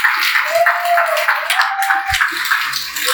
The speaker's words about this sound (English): But without further ado, please give a warm round of applause for Master Sommelier Chris Gaither.